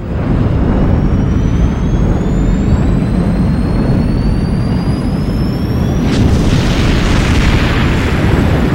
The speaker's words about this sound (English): Sir, the derelict ships, they're beginning to explode. Guff, it's a chain reaction! They're all going up!